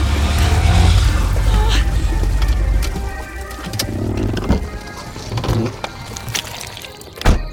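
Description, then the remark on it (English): A car engine revs hard and strains for a few seconds as the car is stuck in a swamp, then eases off. Scattered knocks, rattles and clicks follow. “I wasn't looking in front of me, and I drove right into this swamp.”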